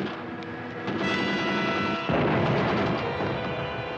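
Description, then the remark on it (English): Dense, continuous gunfire crackles and booms throughout, growing louder and fuller about halfway through, with no voices. “Let's advance our bat shield through this deadly gunfire.”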